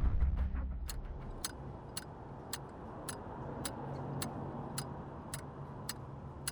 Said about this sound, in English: Ticking? Your metronome? You don't hear it? They can probably hear it in the next office.